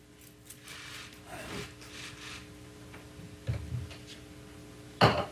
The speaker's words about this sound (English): She is spraying down the podium right now. We're listening to a news conference from San Bernardino County, and they're making a show out. I don't know if show is the right word, but they're disinfecting and cleaning the microphone, the podium,